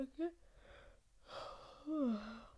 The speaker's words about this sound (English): Oh my God, I'm yawning.